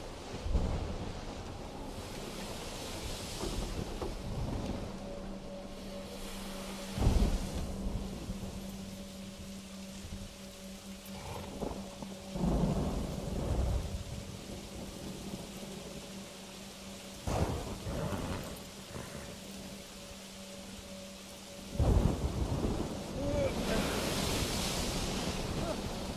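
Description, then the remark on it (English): A fierce storm at sea at night roars steadily with heavy rain and surging waves around a rowing boat taking on water, while several sharp, booming thunderclaps crack through at irregular intervals, loud. “Raging Waves”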